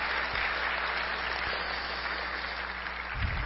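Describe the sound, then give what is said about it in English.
An audience applauds steadily, a dense wash of many hands clapping at an even volume throughout, with no voices standing out above it. “About a round of applause.”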